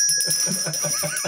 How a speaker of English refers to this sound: Are you calling bullshit on that? Because that does happen. I'm going to ring the bullshit bell.